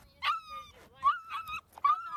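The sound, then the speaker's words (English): A dog whimpers in three drawn-out, high-pitched whines with short pauses between them, fairly loud, with no talking over them. “This is not your fucking dog.”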